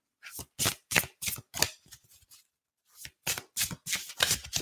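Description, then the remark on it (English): Cards being shuffled in two bursts of quick, crisp riffling strokes, each a bright papery flutter, separated by a short pause with a soft rustle; no voices. “yes, love these cards. Okay, I know these are fun, aren't they?”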